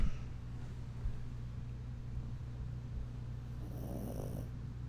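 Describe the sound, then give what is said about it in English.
A dog lying on a person's lap snores softly, a low, steady rumbling drone with a brief breathy swell near the end; no one speaks. “Oh, there he's snoring again.”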